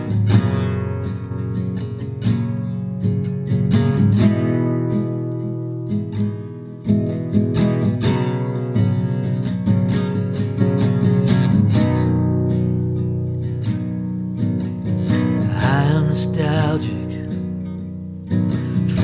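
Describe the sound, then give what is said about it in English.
A nylon-string guitar plays a song alone, plucked notes and ringing chords flowing at a gentle, steady pace with a warm low register and moderate loudness throughout. “I'm going to play a song now that I've been carrying with me for a while.”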